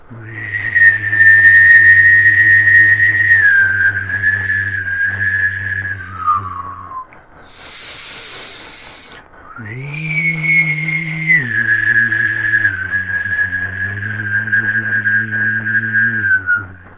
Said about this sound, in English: Something like that. Wow, it's kind of a little eerie. So what is that? Is that a sound effect for a haunted movie or what? I mean, I'm just. What is that? I take it to be something along the effect of throat whistling, throat breathing.